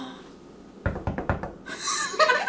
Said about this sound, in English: And then there was a knock at the door.